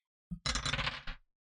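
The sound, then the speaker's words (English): Two dice clatter and tumble across a hard table for about a second, a crisp rattle of several quick knocks that ends abruptly, with no voices. “So roll two dice, take the highest.”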